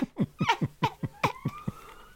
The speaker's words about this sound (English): Oh, my God. Can everyone else hear the police siren? I'm not sure we can go anywhere much further from that.